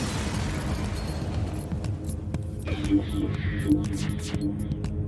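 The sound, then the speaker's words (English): A video game spaceship explosion as the player's ship is torn apart: a heavy, rumbling blast with deep booming low end, followed by crackling debris and a few short pops as it fades, with no talking over it. “One last explosion marks your fate as your ship is torn apart.”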